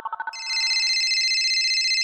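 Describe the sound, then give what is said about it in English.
A telephone ringtone sound effect: a few quick electronic beeps, then a sustained, rapidly warbling electronic ring, loud, with no voices. “But for now, it's time to phone a friend.”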